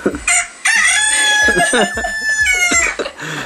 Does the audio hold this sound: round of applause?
no